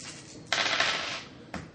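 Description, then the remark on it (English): Dice are rolled for a cult knowledge check in a tabletop role-playing game, clattering and tumbling across a hard surface in a bright, rattling burst lasting under a second, then one more short click as they settle. Nobody speaks. “Can I roll a cult knowledge to see if I can figure out? Yeah, go ahead. Where's my dice?”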